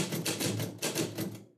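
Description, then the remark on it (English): A typewriter clacks away in a quick, steady run of about eight sharp key strikes, crisp and fairly loud, with no voices over the mechanical tapping. “I swear I will hit you with this typewriter.”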